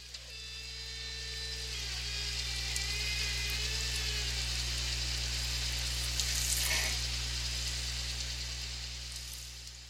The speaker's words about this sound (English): but the second clip was actually a boat winch.